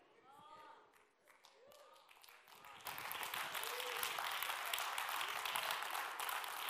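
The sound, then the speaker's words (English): An audience at a church service bursts into steady, loud clapping a few seconds in, after some preaching. The dense applause keeps going without letting up until the end, with voices faint underneath. “Y'all just started clapping.”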